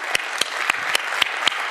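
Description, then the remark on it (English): A crowd applauds the people who volunteered, a dense wash of many hands clapping with a few sharper, louder claps standing out at a roughly regular beat, sustained at an even level throughout. “Everyone, a round of applause who was brave enough”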